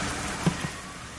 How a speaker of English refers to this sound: Wow, it's pouring rain outside, and there are sirens going by.